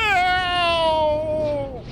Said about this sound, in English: Then he heard a yowl that sent a thrill of terror up his back.